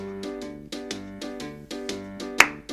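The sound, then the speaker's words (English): Sharp hand claps land in a steady beat over a sustained, tonal musical backing in a jingle mocking football coach Jason Garrett for clapping his hands, with one louder clap standing out near the end. No one speaks. “All you do, Jason Garrett, is clap your hands.”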